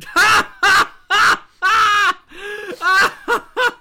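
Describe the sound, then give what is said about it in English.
A voice imitates a terrified scream in a rapid series of about eight loud, shrill, strained bursts with brief gaps between them, with no speech. “She screams in terror.”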